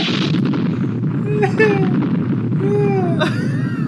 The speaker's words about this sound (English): Jesus, this is a long trailer. Why is it still going? Jesus. Holy crap. Just gunshots.